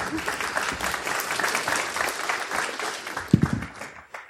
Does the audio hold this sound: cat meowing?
no